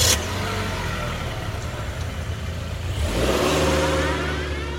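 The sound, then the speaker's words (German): A car engine revs and accelerates, a steady mid-pitched drone that climbs and grows louder partway through, with a brief sharp click at the very start and no voices. “Ihres erste eigene Auto. Oder Ihre erste Fahrstunde.”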